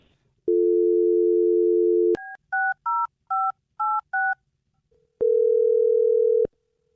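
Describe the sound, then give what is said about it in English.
A steady telephone dial tone, then a quick run of six touch-tone dialing beeps, followed by a single long ringing tone on the line. Loud, with no voices. “I'm dialing the phone number right now.”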